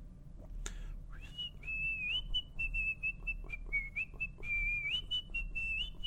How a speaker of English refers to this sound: That's my fucking ringtone on my goddamn phone is Kill Bill whistling deal